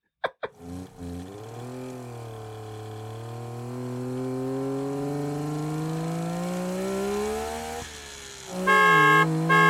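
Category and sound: vehicle, car engine revving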